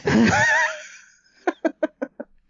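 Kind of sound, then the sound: vocal imitation, imitated heavy panicked breathing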